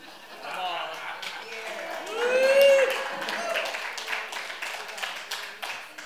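An audience cheers and applauds after a child's drawing is shown, with steady clapping throughout and a swell of whoops and shouts near the middle, moderately loud, before settling back into continued applause.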